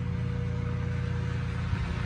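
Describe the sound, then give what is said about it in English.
A lawn mower engine drones steadily throughout as the speaker's father mows the lawn, a low, even motor hum with a faint tonal whine layered on top and no talking. “Oh, my dad mowing the lawn.”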